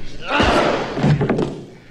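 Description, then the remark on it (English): In a film scene, a woman lands a single heavy punch on a man, knocking him unconscious, with a loud, dull thud, followed by a short burst of scuffling and muffled vocal grunts before things settle. “So she knocks him the fuck out because he doesn't have any money to be her John.”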